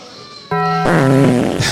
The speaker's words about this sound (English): Oh, farts, fart, yeah. Fart sound effects. Absolutely. So we're going to try this.